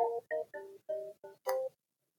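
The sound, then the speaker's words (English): A phone rings in the background with a short melodic tune of about six quick electronic tones, the last one brighter and longer, sounding faint, with no talking over it. “Well, I would say that the phone ringing in the background, everybody.”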